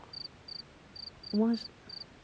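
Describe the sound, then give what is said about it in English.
A cricket chirps in short, high-pitched bursts at a steady, even rhythm, about two per second, fairly soft, with a brief louder low tonal squeak partway through. “What's that noise? Sounds like a cricket.”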